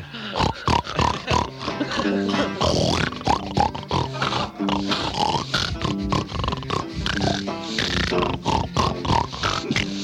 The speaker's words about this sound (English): just snorting and a grunting. It's a flock of swine.